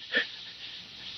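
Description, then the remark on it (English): An injured man's single short, wheezy breath with a slight rasping tone, followed by a faint, steady airy hiss. Quiet, with no one speaking. “His breathing suddenly changed.”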